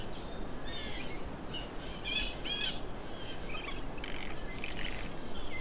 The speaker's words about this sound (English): Whatever that is. Blue jays are mimics, so they do make some weird sounds sometimes. Probably a lot of juveniles in here. This year's fledglings.